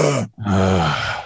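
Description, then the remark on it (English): A voice imitates the strained groan of a six-months-pregnant woman getting out of a chair: a short low grunt, a brief catch of breath, then a longer effortful moan that rises and holds before trailing off. Loud, with no other talking. “By the way, my wife is 6 months pregnant, and she can't get out of a chair without making some noise. And she doesn't even know she's making it. But she's constantly going, ugh.”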